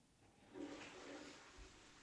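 A toilet flushes with a rushing, gurgling swell of water that surges after a brief quiet start and keeps churning steadily.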